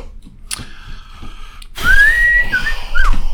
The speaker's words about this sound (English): I do think I like the simple fishing hole whistling of Andy Griffith better.